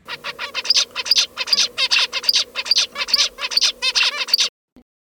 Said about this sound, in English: And then once they learn to produce that, they will sing that same song for the rest of their lives. They will modify it a little bit based on context, but it's pretty much that same song. Let's take a listen to one of those zebra finch songs.